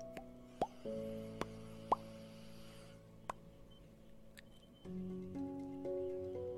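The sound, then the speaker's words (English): Several bubbles plop up through the water of a pool at irregular intervals, short wet pops with a quick rising pitch, heard over a steady low humming drone that shifts partway through. “And then a couple of bubbles.”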